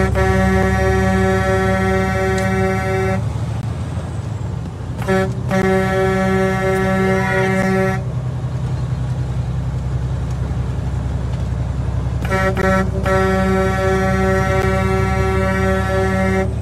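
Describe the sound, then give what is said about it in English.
A vehicle horn blares in long sustained blasts, broken by brief gaps and a short double toot, loud over a steady low engine rumble. “Let's do some honking.”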